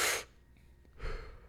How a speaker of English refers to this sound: You do the Wim Hof breathing.